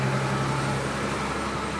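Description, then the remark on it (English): A truck rumbles by with a low engine drone and broad road noise, steady, the deeper engine tone fading partway through. No one is talking. “Looks like this truck go past.”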